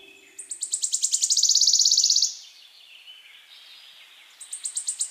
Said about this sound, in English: That's right, a warbler is a bird. A small active insect eater commonly found in gardens, woodlands, and marshes.